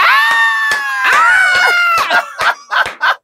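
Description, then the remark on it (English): A loud, high-pitched joyful scream held for about two seconds, then broken into several shorter excited shrieks, with no talking. “Honestly, all I wanted to do was scream.”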